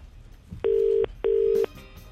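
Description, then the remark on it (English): Two steady electronic telephone keypad tones, each lasting about 0.4 seconds with a short gap between, sounding clearly over a quiet line as a phone number is dialed to place a call. “you're over at the phone. How's it looking? Having a bit of trouble with a couple of numbers here.”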